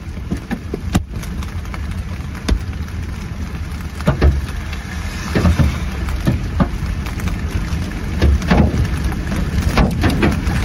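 Softball-sized hailstones pound a vehicle's windshield in New Mexico in loud, irregular cracks and thuds, scattered across a steady roar of heavy storm noise, with no one speaking.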